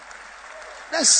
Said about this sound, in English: This is a sad commentary. You are clapping because you don't have revelation.